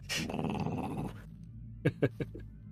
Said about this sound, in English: And then silence. Wow, and the dog growls. There it is. There it is.